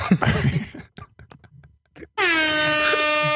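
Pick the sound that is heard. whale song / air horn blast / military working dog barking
air horn blast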